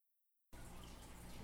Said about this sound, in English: The team now pours in the orange crayon wax straight from the pot, and the purple in after.